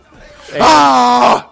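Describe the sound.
People let out a single loud, sustained scream lasting under a second, harsh and strained, rising out of a quieter murmur of voices and then cutting off abruptly.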